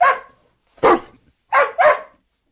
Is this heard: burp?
no